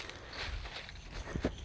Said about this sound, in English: Finally, you could hear the crunch of the leaves under my feet. I don't know if you could hear that before, because it was like, I think it rained a little bit last night and made them kind of like mushy. But we got some leaves.